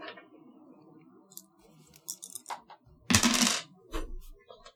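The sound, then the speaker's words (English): A small four-sided die clatters across a tabletop: a few light clicks, then a louder, rattling tumble that settles quickly, over a faint background murmur. “Can you hand me a d4?”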